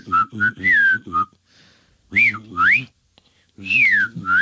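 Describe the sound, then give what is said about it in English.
A person imitates the beeping of the R2 robot by whistling: three bursts of chirpy, warbling tones that swoop up and down in pitch, with short silent gaps between them. “how are you making the R2 sound?”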